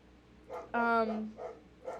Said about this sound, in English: There's a dog barking outside, so now my dog's barking. I'm so sorry. And now it's got Hercules' attention.